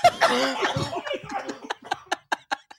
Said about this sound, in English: Are you sure it's a cough or is it diabetes? Is it diabetes?